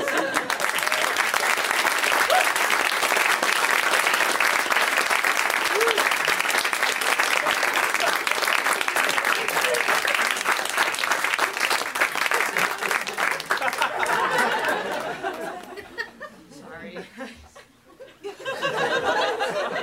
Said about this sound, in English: Okay, so huge round of applause as you would for a man.